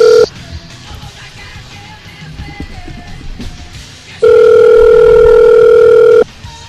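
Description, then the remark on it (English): A phone line ringback tone: a short tail of one steady electronic ring, then a few seconds of faint line hiss, then another loud two-second ring burst. No voices. “That's one good thing about those personalized ringtones is it's not like we're bored sitting here listening to a ringing phone.”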